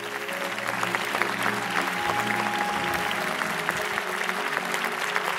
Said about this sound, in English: Thank you to every veteran in attendance and watching online today. Give our veterans a great hand clap.